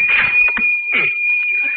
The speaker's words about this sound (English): That cash register drawer hit me right in the stomach again.